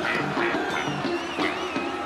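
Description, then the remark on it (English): A series of nasal duck quacks, about five in quick, uneven succession, from a costumed performer on a wireless microphone in the crowd at Madison Square Garden, comes through loud, with a steady crowd murmur underneath. “And I believe … is somewhere in the crowd tonight. On wireless.”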